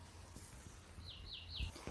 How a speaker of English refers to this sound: We've just located two nightingales singing together, having a sing-off. One is in a tree line with some bushy bits in it, but the other one is in this wonderful big patch of scrub.